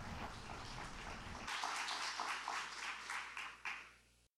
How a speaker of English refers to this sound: Because remember, we praise God, but we do honor people. So let's welcome him with some applause.